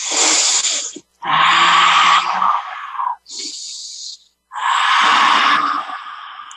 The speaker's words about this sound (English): So it's a yoga science of breath. Breath is consciousness. Actually, in Veda scripture, we say, Om Pranaya Nama. I bow to the breath of the Lord. I am breathing.